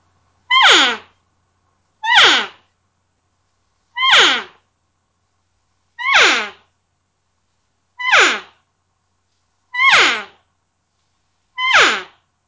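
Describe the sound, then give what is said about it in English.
An open-reed elk call, a worn 'Trophy Wife' call with its paint worn off to white, blown seven times at a steady pace, each a short, high, nasal mew that slides sharply downward, with clean silence between the calls and no talking. “Yeah, it's just elk. It's just got an elky sound, and it's not me.”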